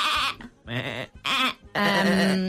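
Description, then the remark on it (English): A person imitates a sheep's bleat in four quavering, loud bursts, the last one drawn out longer with a wavering, nasal tone. “I'll try and do a sheep.”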